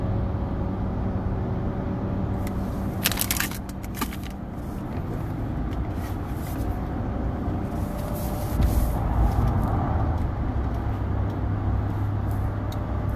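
Steady road traffic rumbles throughout, with cars, including a red Lexus, and buses passing by and a short burst of hissing, like a bus air brake, early on; no one speaks.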